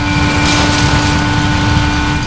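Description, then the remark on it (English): A loud, steady mechanical roar from a pump just plugged in at an airport, with a shuddering low rumble and a sustained whining hum on top, like a struggling pump churning continuously without pause. “The pump shudders. It emits a sound like a jet engine in a blender.”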